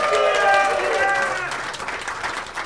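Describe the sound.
A crowd applauds loudly, dense clapping with some cheering voices mixed in, steady for a couple of seconds before easing off slightly toward the end.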